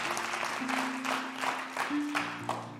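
An audience claps together in a steady, rhythmic beat, the many hands blending into a dense wash while sustained low organ-like chords hold underneath.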